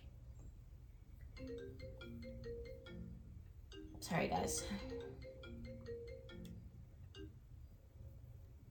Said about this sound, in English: My phone going off.